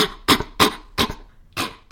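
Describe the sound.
A woman imitates a mountain gorilla's irritated, sharp, cough-like warning bark, repeated in four or five short, harsh bursts spaced roughly evenly, loud, with brief pauses between.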